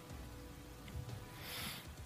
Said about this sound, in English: And, do we know when this rain is going to be ending? We don't. Since it is implied, at least, that that device that was set off is causing this.